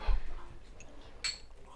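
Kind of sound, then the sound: household object, glasses clinking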